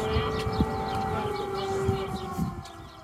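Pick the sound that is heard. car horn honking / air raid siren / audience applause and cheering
air raid siren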